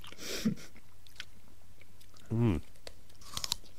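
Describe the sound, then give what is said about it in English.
A crisp apple gets a crunchy bite, followed by a brief voiced murmur and a few more quiet, crackly chewing crunches. “I don't know about you, but I hate soft apples. Crunchy all the way.”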